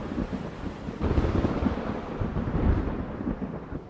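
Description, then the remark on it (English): A deep, rumbling thunder crash rolls through a stormy night during a lightning storm, swelling loud around the middle and lingering with a broad low roar, wind and rain hissing beneath it. “And in one flash of lightning, I saw her.”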